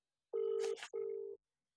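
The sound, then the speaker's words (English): A phone's outgoing ringing tone gives one double ring: two short, steady electronic bursts separated by a brief gap, clear, with a faint rustle between them and no talking. “Let me see if I could get him on the phone because he loves it.”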